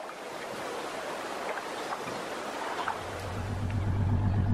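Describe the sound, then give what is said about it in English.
Steady rushing water and wind noise from a boat moving across Lake Killebrew in Kepler, North Dakota, with a low motor hum rising in the last second or so. No one speaks. “Looks like most of the boats are going out to the north side of the lake.”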